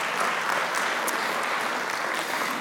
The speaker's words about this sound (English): Are you grateful for Him this morning? Would you just give Him a round of applause of gratitude for what He has done?